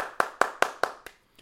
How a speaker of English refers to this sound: Let's give it a round of applause. Round of applause, please.